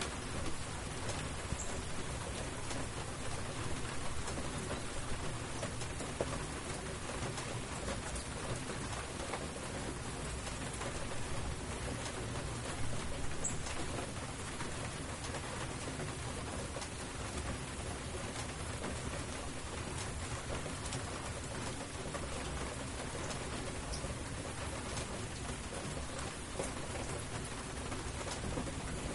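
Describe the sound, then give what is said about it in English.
Steady downpour of rain, a dense continuous hiss of drops pattering on surfaces, even and unbroken throughout with no voices. “He was out here all confident when it was just a drizzle, but now that it's a steady downpour, that bird's really shut his yapper.”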